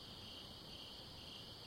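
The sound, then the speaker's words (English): A steady chorus of crickets trilling at night in a backyard, a continuous high-pitched buzz held at an even, fairly faint level throughout, with no voices and only a soft low rumble underneath. “Can you hear that? I think they're crickets.”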